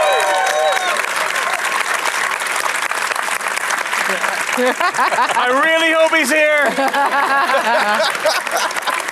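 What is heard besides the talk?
audience applauding and cheering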